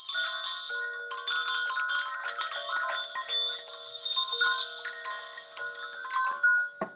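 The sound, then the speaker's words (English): Two tuned hanging bells ring together, struck again and again in quick succession, their bright, overlapping tones shimmering and sustaining with no voices, ending in a quick final clatter. “This is another thing that I use with hung bells.”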